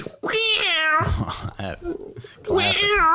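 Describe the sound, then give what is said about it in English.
A person does a loud, drawn-out cat meow impression, a stretched wail with a short vocal break in the middle, followed by a second yowling meow. “Hey, can we hear that impression of a cat being let out of the bag again?”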